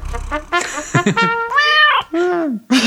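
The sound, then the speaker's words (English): A cat meows several times in quick succession, fairly loud, with drawn-out, rising-and-falling cries and no one talking over them. “we did talk a lot about the cats, didn't we?”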